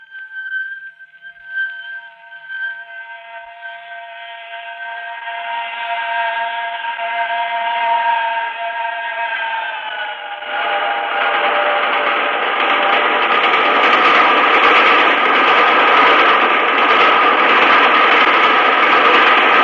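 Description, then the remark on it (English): A steam train's shrill, multi-toned whistle holds steady for several seconds, then a loud, churning roar of the train rushing past into a dark tunnel swells up and keeps building beneath the fading whistle, in a radio dramatization of Dickens's The Signalman. “It had smashed by, like a wounded monster screaming in pain, and disappeared into the dark tunnel.”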